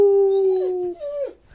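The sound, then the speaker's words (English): A dog named Moose lets out a single sustained howl, its steady tone wavering and sliding downward before trailing off, loud with no talking over it. “Are you giving it 5 wolves too, Moose?”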